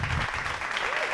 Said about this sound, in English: Yay! We got our applause button to work. Yeah, it's back.